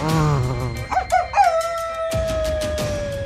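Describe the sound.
A voice imitates a werewolf howl, starting low, breaking into a few rising yelps, then holding a long, wavering high note. It's loud, with no talking.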